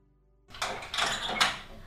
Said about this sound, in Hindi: देख लगता है तेरे मामा आ गए बेटा। हाँ, दरवाजा खोलो।